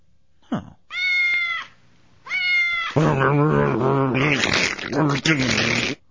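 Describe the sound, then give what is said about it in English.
A comedic sound effect: a cat meows twice with brief pauses, then loud, distorted yowling blends with the harsh whirring, grinding noise of a blender for several seconds before cutting off abruptly. “That was the blender noise.”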